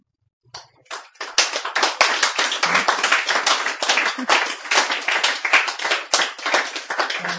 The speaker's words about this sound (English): You're so nice. You don't have to clap so much. You could just not clap. Okay, you're nice.